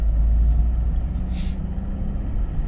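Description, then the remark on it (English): Steady, low road rumble from inside a moving car on a cold day, 3 degrees outside, a constant engine and tyre drone filling the cabin, with a brief faint high-pitched squeak partway through. “In fact, I've just realised my car thermometer is saying that it's 3 degrees.”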